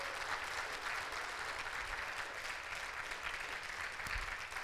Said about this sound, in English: Clap your hands.